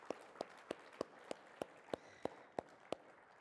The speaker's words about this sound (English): You've made a healthy church and a healthy team for it. Yes, you can clap for them. That's appropriate.